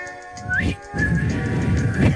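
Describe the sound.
A person whistles a short sea-shanty-style tune imitating the pirate's whistle from the ride, with a couple of rising slides and a sustained note, against a steady background hum. The whistling is moderately loud.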